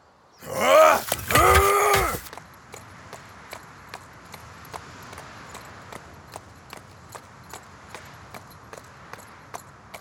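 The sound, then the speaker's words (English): A loud, strained horse whinny opens, then a steady clip-clop of hooves follows at an even walking pace, continuing to the end. “Horses won't be able to make it the rest of the way with the both of us.”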